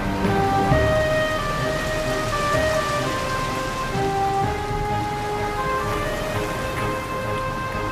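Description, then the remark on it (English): Heavy flood rain pours down steadily and loudly for the whole stretch, covering the whole earth, a dense hiss of drops on surfaces, with soft sustained musical tones drifting underneath. “The rain covered the whole earth.”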